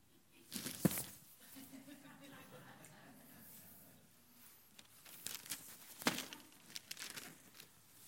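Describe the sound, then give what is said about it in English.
Packing paper crinkles and rustles in several uneven bursts as it is pulled from a box, the loudest near the start and again toward the middle, while faint voices murmur in the background. “You want, this is just full of packing paper.”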